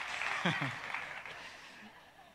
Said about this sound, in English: I mean, you applauded. That's good.